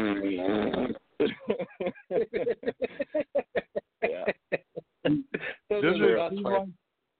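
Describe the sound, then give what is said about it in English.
Someone imitates a fart with their voice: a drawn-out opening blat, a quick stuttering string of short sputters, then one last longer burst, fairly loud. “But sometimes it's just funny, like, especially if you can fucking perfectly time it, where someone's telling, like, a really important, serious story, and in the middle of it, you're just like...”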